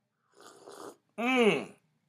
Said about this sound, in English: Let's do some slurping real quick.